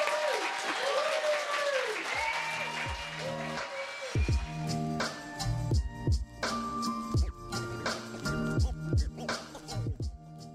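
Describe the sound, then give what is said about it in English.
An audience applauds author Jess Ho at the end of a book conversation on 28 July 2022, with steady, dense clapping that carries throughout, while music with swooping tones and a thumping low beat rises underneath midway through. “So please, round of applause for Jess.”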